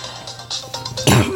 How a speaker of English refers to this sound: sorry, guys, about my cough